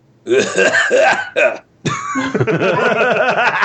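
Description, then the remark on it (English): A rough, phlegmy smoker's cough in two quick, harsh, loud bursts, then a voice starts talking right after it. “Smoker's cough.”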